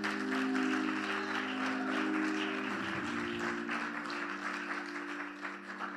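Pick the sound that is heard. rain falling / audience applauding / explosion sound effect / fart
audience applauding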